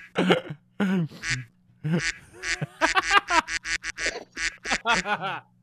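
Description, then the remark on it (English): A pet gives a rapid string of harsh, honking coughs, about a dozen nasal bursts in uneven rhythm, loud with brief pauses between them and no talking. “He's coughing.”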